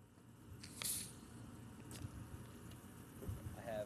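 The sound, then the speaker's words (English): A soda bottle twists open with a sharp hiss of escaping gas, followed by faint fizzing, small plastic clicks and soft liquid sounds as it pours. “All right, let me open mine.”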